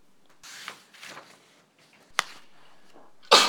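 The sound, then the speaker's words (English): A sharp, loud sneeze bursts out near the end, preceded by a few soft breathy rustles and a brief click, with no talking. “Gesundheit.”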